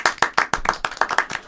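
A few people clap in a steady, fairly quick rhythm, about ten sharp hand claps in under two seconds, loud and unaccompanied by speech.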